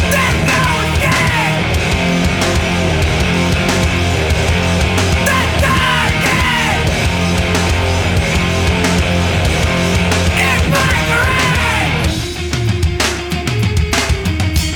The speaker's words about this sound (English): Snares just don't sound like that anymore. Nope.